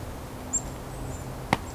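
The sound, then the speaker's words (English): A nuthatch coming down a tree in a maple lot gives a faint, brief, high nasal squeak, followed by softer thin traces of calling and a single sharp click near the end, all over a low steady hum. “A little bit of a nasal squeak.”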